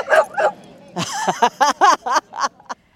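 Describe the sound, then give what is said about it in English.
A dog barks twice, pauses, then lets out a quick run of sharp, high-pitched barks and yips, fairly loud, at Dog Mountain, a dog park. “It's sacred space for dogs and the people who love them, like me.”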